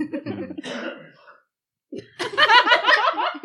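A loud, harsh cough erupts in a rough burst, then a short silence before another raspy, throaty fit of coughing mixed with sputtering, laugh-like sounds.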